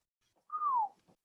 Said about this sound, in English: That was a really good whistle. I might have to have you teach me how to whistle. I can't.